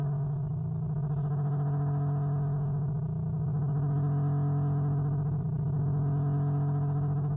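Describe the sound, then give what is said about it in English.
Warbling electronic tones with a wavering, whale-like quality, like mechanical orca calls, sustained and steady for several seconds over a low droning hum, with no talking. “Okay, now it sounds like a mechanical orca has swum up next to me and is trying to communicate in her alien language.”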